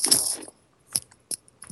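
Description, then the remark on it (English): A zipper is yanked in one quick, bright rasping pull, followed by three short, sharp clicks spaced apart in near silence. “Somebody, you need a zipper little sound bite.”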